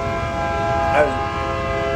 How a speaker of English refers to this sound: It's the train. Alright, dude, we get it.